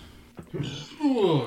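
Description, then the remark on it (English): A single sneeze: a sharp, sudden burst of breath followed by a short voiced, throaty tail, fairly loud and heard on its own without talking over it. “Bless you.”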